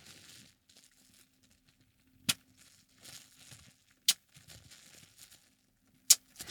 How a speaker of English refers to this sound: I don't want to pop too many of the bubbles because I might use the bubble wrap to mail something in the future. So here is going to be me crinkling and then popping some bubbles.